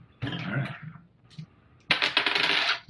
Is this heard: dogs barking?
no